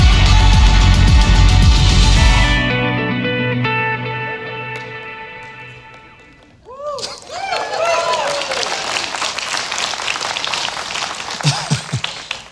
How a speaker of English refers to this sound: I have no idea why they're clapping.